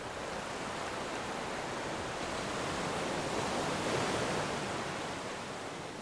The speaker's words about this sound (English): Your body is completely absorbed in the waves on this beach, and you can still feel the waves flowing through you as you breathe.